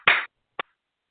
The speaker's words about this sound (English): Great. I'm going to do a little clapping, clearing for whatever it is that gets in the way of that.